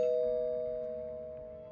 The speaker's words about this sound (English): I pushed my finger on the button and the bell chimed.